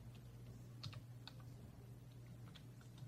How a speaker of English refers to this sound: Yes. He's typing in.